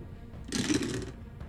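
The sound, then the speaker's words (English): A brief burst of clattering rattles as many dice, including six-sided dice, are rolled together for damage and sneak attack damage in a game, bright and busy for about half a second before fading into quiet. “That was a lot of dice.”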